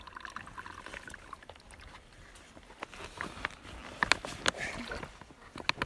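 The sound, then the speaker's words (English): Water trickles and splashes steadily as it's poured through a filter to make it drinkable, with a few sharper drips and light clinks breaking through the continuous flow. “So you don't need to get water for... Well, you can here drink, I am filtering it.”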